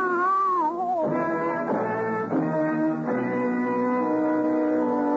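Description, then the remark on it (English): Cats yowl in a dark alley in long, drawn-out wails that rise and waver, several cries overlapping loudly and continuously with no pauses, with no voices present. “You lie in the blood of your death and try to explain how it was going to be to the attentive cats.”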